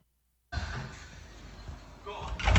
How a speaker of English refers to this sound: Look at that. They've knocked his fucking door down. There's four of them there.